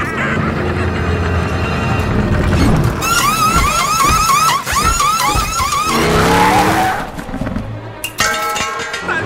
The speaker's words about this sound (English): That was the fastest pit stop I've ever seen. It was a great stop, but he's still got to beat that pace car out. It's going to be close.